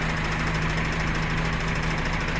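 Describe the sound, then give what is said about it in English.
A parked bus engine idles steadily with a low, constant rumble and hum that never changes pitch or rises, while the driver is away at a chicken takeaway. The sound is unbroken throughout, and no one speaks. “He's run away. It's still running. How come we're not moving this only happens on the late ones.”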